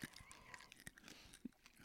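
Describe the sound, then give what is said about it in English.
Crisp crunching as a sweet potato candy is bitten into, a quick series of sharp cracks and chewing noises with one louder snap near the end, and no talking. “Let's crunch into it.”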